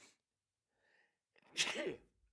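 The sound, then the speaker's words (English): A single loud sneeze bursts out after a brief quiet inhale and a faint breathy buildup, with no talking around it. “What a big buildup to that sneeze.”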